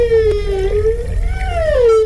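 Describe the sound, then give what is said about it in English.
A long, wavering whale-like call, said to come from a whale with an alarm clock strapped to its head, with a rich harmonic tone, gliding gently up and down in pitch for about two seconds over a steady low rumble. “A whale with an alarm clock on its head.”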